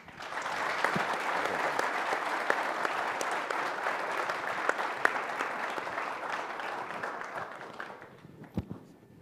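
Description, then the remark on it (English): Sustained applause from a large audience welcoming Iraqi Prime Minister Al-Abadi, a dense steady wash of many hands clapping at even loudness for about eight seconds before thinning out to a few scattered final claps. “So without any further delay, would you please, with your warm applause, thank and welcome the Prime Minister of Iraq, Prime Minister Al-Abadi.”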